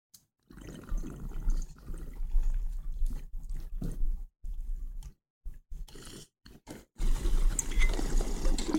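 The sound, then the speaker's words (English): Steady water bubbling from a bong hit, gurgling in long pulls broken by short pauses, then a final strong burst of bubbling. No one speaks. “I'm not going to take a yellow bong rip out of this”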